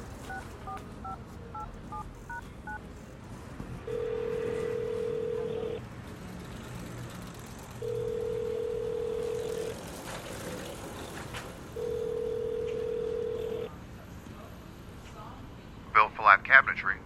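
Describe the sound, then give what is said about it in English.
A quick run of touch-tone keypad beeps as a call is dialed on a borrowed phone, followed by a steady telephone tone sounding in three long, evenly spaced pulses over a low background hum. “Well, my phone is kind of acting up right now, and I was wondering if I could use yours to make a call.”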